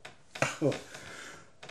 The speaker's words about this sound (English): Man, I've been holding that cough in for a while.